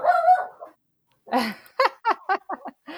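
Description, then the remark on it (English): A small puppy yaps at someone outside, starting with a high, drawn-out bark, then after a brief pause firing off a quick run of short, sharp barks. No one is talking. “what's your puppy's name?”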